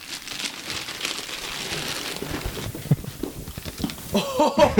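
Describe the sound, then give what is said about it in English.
Polka-dot gift wrapping paper crinkles and rustles as a present is unwrapped, the paper crumpled and pulled open, a steady papery hiss that grows into louder, sharper crackles near the end. “I like the wrapping paper.”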